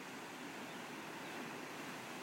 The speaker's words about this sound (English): The power of the waves.